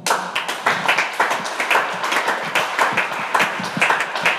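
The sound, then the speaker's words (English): A crowd claps steadily and loudly for several seconds at a church service, many overlapping hand claps forming a dense, rhythmic patter with no speech over it. “Are you clapping?”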